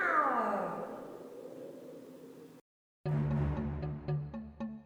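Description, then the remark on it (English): A giant cat lets out one loud, drawn-out meow that slides downward and fades. After a brief silence, plucked musical notes follow in a steady rhythm. “Maybe I can distract the giant beast with something. Like what? Like my lasso. You know how cats love string.”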